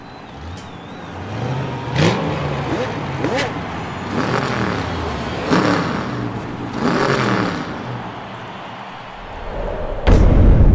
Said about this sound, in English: I hope you enjoy this trailer for the movie of the week, Cars 2.